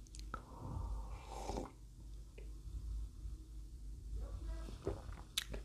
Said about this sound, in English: let me just take a sip of my coffee.